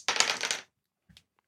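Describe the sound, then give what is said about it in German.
Dice clatter and rattle across a hard table for about half a second, then settle with one small, quieter click shortly afterward. No voices. “Ich sollte doch den 20er Würfel nehmen.”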